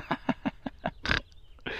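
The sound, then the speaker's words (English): Baby goats born the night before bleating: a quick, evenly spaced run of five short, reedy calls, then a longer, louder bleat and the start of another. “Baby goats! There they are, being goats.”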